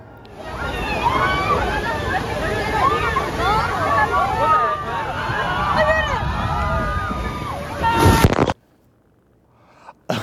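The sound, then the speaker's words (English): A dense crowd chatters and shouts over rushing, splashing water at an amusement park water ride, loud and steady for about eight seconds before cutting off to near silence. “To stand by the water ride and get sprayed and spritzed a little bit.”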